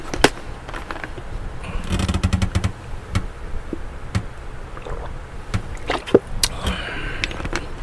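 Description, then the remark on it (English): Someone takes a drink of water with no talking: soft sips and gulps, scattered clicks and handling noises, and a busier cluster of sounds about two seconds in. “Oh, I just said something there, so let me drink some more water.”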